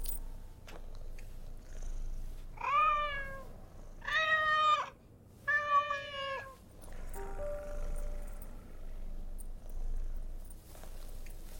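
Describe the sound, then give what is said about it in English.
A cat meows three times in quick succession, each call drawn out and rising then falling, fairly loud over a low background hum, followed by quieter ambient noise. “Send in the cat.”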